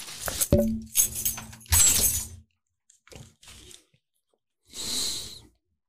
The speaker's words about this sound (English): I was taking my keys off. It was bothering me.